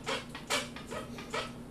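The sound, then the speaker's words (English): A chair squeaks and creaks four times in a steady back-and-forth rhythm, each strained, scratchy creak fairly quiet, with no voices. “My chair squeaks a lot. You hear that?”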